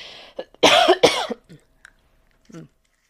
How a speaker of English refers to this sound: I don't have a cough. Well, sounds like I have a cough, but I have a cough drop here.